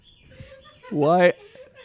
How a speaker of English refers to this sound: There's those damn birds again, son of a bitch.